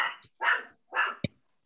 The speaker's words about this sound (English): And I'm going to resist hearing the dog yap, okay?